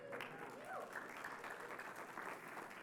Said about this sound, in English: There should be like some clapping, some cheering, something.